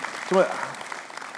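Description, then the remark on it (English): Scattered audience clapping during a sermon, applauding Jesus' resurrection, a steady patter of many hands at moderate volume, with a short voiced exclamation rising briefly above it near the start. “This is what, you can clap for that.”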